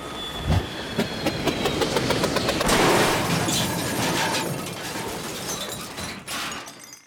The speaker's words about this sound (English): Well, it appears our crash landing has alerted Mila to our arrival.